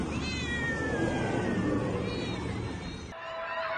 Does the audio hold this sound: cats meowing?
yes